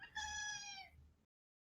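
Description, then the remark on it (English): A single loud, drawn-out meow from a female cat with a strained, crowing quality, lasting under a second over a low background rumble, then silence. “What up, your cat sounds like a rooster.”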